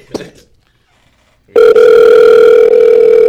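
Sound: phone call ringing tone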